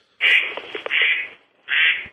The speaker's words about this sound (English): Oh, I hear ducks already. What are you in your backyard? Duck calls going off in the background. Oh, guy, one of the kids playing with the duck calls.